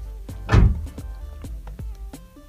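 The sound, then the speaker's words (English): A car door shuts with one heavy thunk as two people get into the car, followed by a few lighter clicks and rattles as it settles. No one speaks. “Kezi says as she opens the door and they both get in”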